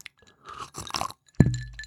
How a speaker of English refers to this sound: Can you hear the ice clinking around?